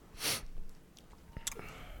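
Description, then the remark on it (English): Someone drinking water: a breathy slurping sip, then a few soft wet clicks and gulps as it is swallowed, quiet and with no talking. “Some water drinking ASMR sounds.”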